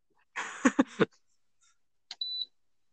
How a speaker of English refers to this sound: What's the beep noise. It was like something my mom made.